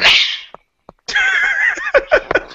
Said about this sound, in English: just sneezed.